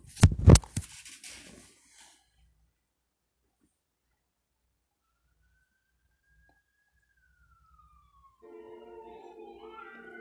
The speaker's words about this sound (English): Yeah, yeah, record that too, the police sirens.